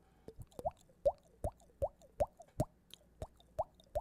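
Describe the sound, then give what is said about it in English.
Hollow, drippy water-like plops made by slapping a bearded cheek, about ten in a steady, quick rhythm, each a short pitched pop with a slight upward bend, with no talking. “That's a drippy water sound I make from hitting my cheek.”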